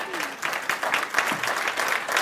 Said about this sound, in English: Is that the best clapping y'all can do?